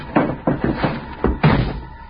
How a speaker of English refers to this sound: Slammed the door shut, got in alongside of me.